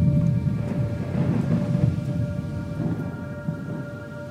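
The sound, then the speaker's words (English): A thunderstorm rumbles steadily, deep rolling thunder underneath a constant hiss of rain, loud throughout with no voices. “And then came the storm.”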